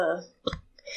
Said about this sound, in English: Sorry, that burp wasn't part of the impression.